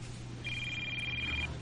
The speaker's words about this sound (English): Ooh, he's getting a call.